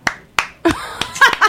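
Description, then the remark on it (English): A handful of sharp, scattered claps and finger snaps, about six in all, arriving unevenly over a second and a half with short gaps between them and no one speaking. “can we get some claps for that?”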